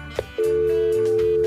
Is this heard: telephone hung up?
yes